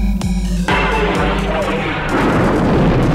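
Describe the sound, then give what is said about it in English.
In a Star Wars scene, a battle station fires a sharp energy-weapon blast that cracks out, then the planet Alderaan's huge roaring explosion swells into a dense, rumbling wall of noise that stays loud to the end. “You may fire when ready.”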